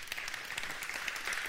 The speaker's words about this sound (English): Oh, come on, you can't golf clap that one.